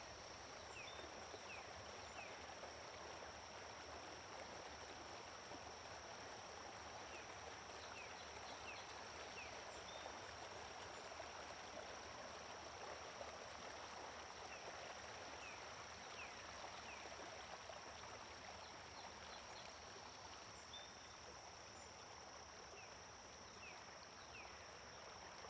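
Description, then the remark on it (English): A river flows in a steady, unbroken wash of rushing water that stays even throughout, with a thin high hum and a few faint bird chirps in the background. “It's as though the whole environment's joined with the metamorphosis of the river.”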